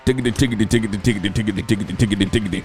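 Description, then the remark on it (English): A voice imitates a drum roll with a rapid, steady burst of pulsing, buzzy syllables, fairly loud, running continuously for a few seconds. “Drum roll, please.”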